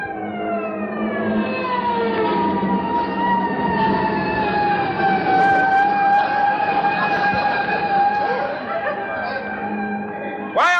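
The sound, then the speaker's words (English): An approaching fire engine siren wails loudly and steadily, its pitch sagging slowly over several seconds before sweeping sharply upward again at the end, over a low rumbling background. “This fire with a handful of water, Chris, before those guys get here.”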